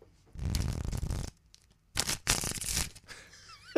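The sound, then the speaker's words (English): Riffling of a deck of cards, heard as two quick bursts of crisp, fluttering paper noise separated by a brief pause, with no talking. “Okay. Shuffle one.”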